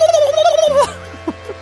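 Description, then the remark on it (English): A person in a studio imitates a turkey gobble loudly: a wavering, warbling call that breaks into a few short throaty clucks before fading. “The time of year where I do my turkey sound.”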